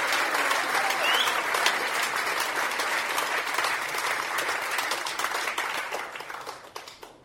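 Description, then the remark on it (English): Sustained audience applause after a poem is performed, a dense crackle of many hands clapping at steady loudness, gradually thinning and fading toward the end. “It's okay to clap now for Samuel.”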